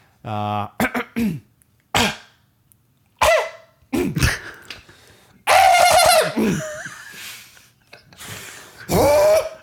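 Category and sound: human body sound, throat clearing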